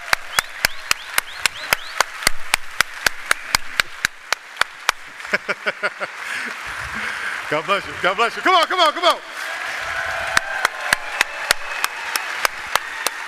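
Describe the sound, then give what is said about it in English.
A standing crowd applauds Dr. Amen with sharp, rapid claps filling the room, while a man speaks over it in a lively, encouraging voice before the clapping continues. “Come on now, let's give him a big round of applause.”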